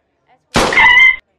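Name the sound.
gunshot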